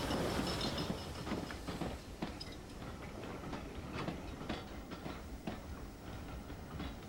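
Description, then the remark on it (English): A train arrives at Bewdley station, rolling steadily with a continuous rumble and regular clicking clatter from the wheels, even in loudness, with no voices, as the driver gives up the token to the waiting signalman. “On reaching Bewdley, the driver gives up the token by looping it in its holder over the arm of the waiting signalman.”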